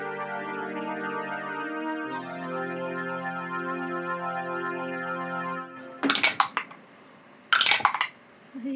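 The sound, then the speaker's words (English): Sustained musical tones play for several seconds, then two short bursts of hard, clattering rattles follow as players roll dice for initiative across a tabletop. “I want everyone to roll initiative.”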